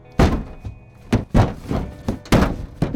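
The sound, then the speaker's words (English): A grab and a scuffle, then heavy, dull thuds as a body is slammed against the bar above, five or so loud, uneven impacts over a few seconds with no voices. “You hear as there's a grab, a scuffle, and a slam against the bar above.”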